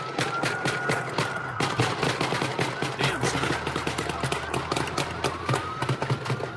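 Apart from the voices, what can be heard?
rapid gunfire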